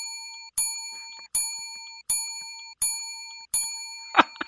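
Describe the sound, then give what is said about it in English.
A bright bell is struck five times as a sound effect in a steady rhythm, each clear metallic ring lingering and fading before the next. It sounds alone, with a brief rustle at the end. “Because I missed all of them with the bell.”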